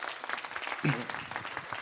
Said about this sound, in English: Why don't you give me a big round of applause on the front row here.